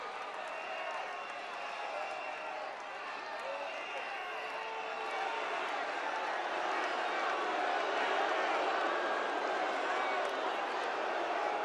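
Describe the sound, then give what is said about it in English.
At a Donald Trump rally, a large crowd roars with sustained booing and jeering at hecklers in the audience, a dense, steady wall of voices that swells slightly louder toward the end, with scattered shouts and claps mixed in. “Hecklers are out in the audience. They're getting booed.”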